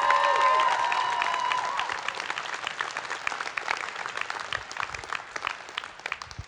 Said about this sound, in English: So can we give him a round of applause?